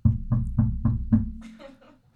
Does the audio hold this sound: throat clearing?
no